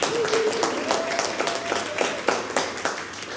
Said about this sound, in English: You got two of our two smaller questions right. Big round of applause.